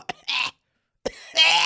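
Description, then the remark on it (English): Two forceful, exaggerated coughs, each a sharp hacking burst trailing into a raspy, breathy rasp, separated by a brief silence; fairly loud, with the second one longer and harsher. “And I'm going to get so close up in your face, I'm going to cough in your face.”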